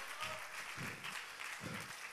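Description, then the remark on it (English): Steady applause from a large standing audience fills the space, a dense wash of many hands clapping at once, with faint voices murmuring underneath. “If you want to do that, stand to your feet, clap your hands, and say, God, fill my cup.”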